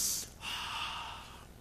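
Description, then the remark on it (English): An airy intake of breath through the nose: a quick sharp sniff followed by a longer, steady inhale, with no talking. “Can you imagine waking up in the morning and going into the garage, start up your car, garage doors down, everything's closed up, and you just sort of sit in there and just sniff the exhaust and the fumes.”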